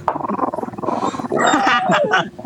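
A female dog growls and whines in an agitated, continuous burst while being held by a person, with rising yelps and squeals toward the end, fairly loud.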